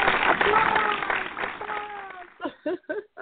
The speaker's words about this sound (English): Applause.